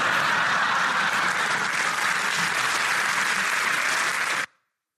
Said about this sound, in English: I love the applause.